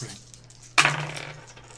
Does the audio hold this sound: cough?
no